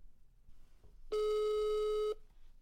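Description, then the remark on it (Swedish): A single steady ringing tone of an outgoing telephone call lasts about one second, a loud, flat, electronic hum heard clearly over a quiet background with no one talking. “Oj, snälla, jag ringer igen.”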